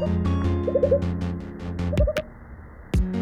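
A giant burrowing frog, also called the owl frog, gives owl-like hooting calls: two quick runs of short, soft hoots over a low droning background, with a few sharp knocks and crackles between them.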